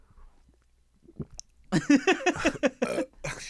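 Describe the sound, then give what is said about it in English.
After a quiet moment, a voice imitates a girl gulping loudly when she drinks: a rapid run of throaty swallow sounds in a steady rhythm, as if someone were noisily drinking. “I'm like, you just took one sip. How's it that loud?”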